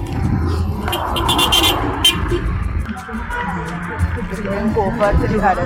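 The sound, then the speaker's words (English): Steady roadside traffic rumbles, with cars passing and a dense low-end wash of engine noise, while indistinct voices murmur in the background; a person waits for help to cross the road. “So I'm now back to Sao, and just waiting for somebody to assist me cross the road.”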